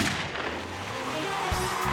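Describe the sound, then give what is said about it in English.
A starting gun goes off with a sharp, loud crack at a car race on the sand of Daytona Beach, where 27 street-legal family sedans by Plymouth, Packard, Ford, Chrysler and others idle at the line, over a dense, steady roar of noise, followed moments later by a second brief burst. “The starting gun fired, and absolute chaos erupted across the thin ribbon between land and sea.”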